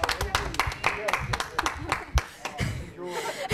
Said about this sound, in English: Yay! Let's give him all a round of applause, people.